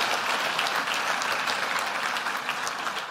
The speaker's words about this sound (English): We often thank the people up, the show ponies up the front, but they're behind the scenes. So let's give them a warm round of applause. Thanks, guys.